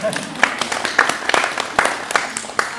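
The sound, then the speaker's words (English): An audience claps together in a steady, dense patter of many hands, with sharper individual claps popping out now and then, holding a fairly even loudness throughout. “But you can clap now, actually.”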